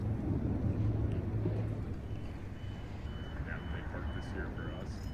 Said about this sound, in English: Out here at the Maricopa Elections Office, more Penske trucks coming in, apparently delivering ballots.